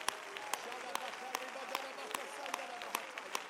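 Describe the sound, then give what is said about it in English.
A Pentecostal church audience claps hands together in praise of God in a steady, even rhythm, sharp beats roughly twice a second, over a continuous murmur of voices and sustained tones. “Would you clap your hands one more time and let's praise God together before we're seated with a lifted voice.”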